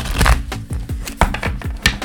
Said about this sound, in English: Let's get these cards shuffled.